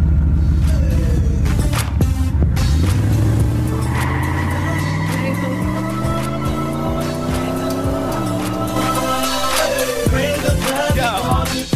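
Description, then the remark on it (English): A car engine starts up and revs loudly, its pitch climbing steadily for several seconds before dropping back, with scattered clicks and rattles over the roar and no voices. “As you hear the car being crunk, I have to get up out of here.”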